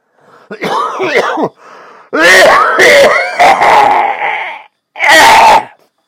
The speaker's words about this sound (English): Damn COVID. No, it's actually smoker's cough.